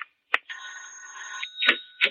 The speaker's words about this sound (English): Then I heard the bell.